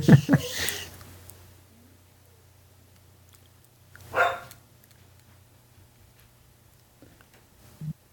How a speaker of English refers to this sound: Is that an actual dog or is that …?